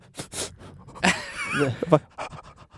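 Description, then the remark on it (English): A person imitates a dog heard during a sad movie, starting with two quick breathy pants, then a high, wavering whimper that rises and falls before trailing off into soft panting breaths. “Yeah, if I hear a dog during a sad movie...”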